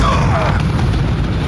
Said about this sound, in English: As Bud and Jack made their escape, the Rangers were not flying when an explosion went off.